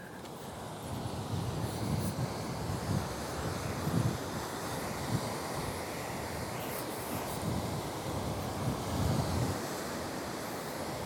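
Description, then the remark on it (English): Waves crash steadily onto rocks on the coast in rolling surges, with gusty wind rumbling across the microphone throughout; no one speaks. “Probably hear the wind and the waves crashing onto the rocks.”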